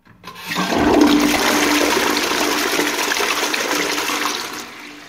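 A toilet flushes in one continuous rushing whoosh of water, fairly loud, swelling quickly and then draining away as it fades out over a few seconds. No voices.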